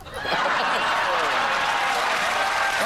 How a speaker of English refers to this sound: Crowd went wild for that, didn't they? That was for charity as well.